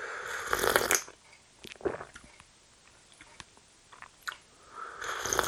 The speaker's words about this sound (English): No one's actually messaged in yet to say how much they absolutely hate the slurping noises. I mean, I'd rather that than someone say how much they love the slurping noises.